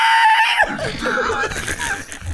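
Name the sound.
person screaming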